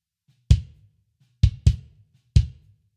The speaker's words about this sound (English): So no reverb on that one though. That way the kick doesn't have to be as boomy. The kick can be more punchy like this.